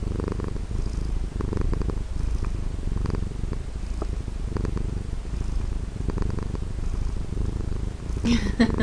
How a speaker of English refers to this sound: So is she wanting to say hello yet? She's definitely a purrer, but yeah, don't get too many meows out of her.